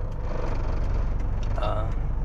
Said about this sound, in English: The car that I'm in right now is pretty loud. It's pretty loud.